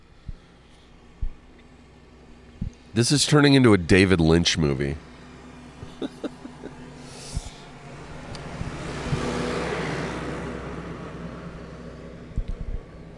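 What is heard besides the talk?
tractor driving past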